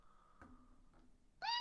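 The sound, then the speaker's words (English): A cat lets out a short, loud, tonal meow near the end, after a stretch of quiet background noise with a faint soft tone and a light knock. “Hey, cat.”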